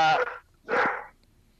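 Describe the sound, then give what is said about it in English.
A puppy lets out two deep, full-throated barks in quick succession, loud, with a short pause between them and no talking. “It's a deep bark for a puppy.”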